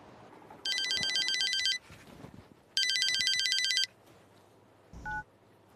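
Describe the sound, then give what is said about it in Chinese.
A phone call is placed: the telephone rings twice in long, bright, buzzing bursts with a pause between them, followed by a short electronic beep. Nobody speaks, and faint background noise runs underneath. “啊，打俾阿 Kelvin 仔睇下佢有冇办法先。”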